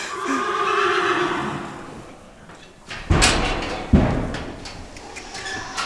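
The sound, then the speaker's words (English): A horse named Swayze whinnies loudly for his dinner in a barn in Sisters, Oregon, as hay is tossed, a long shaky neigh with harmonic bands, followed by a couple of sharp thuds like hooves or a stall door banging. “He's making sure everyone in the barn is aware that he's ready to eat.”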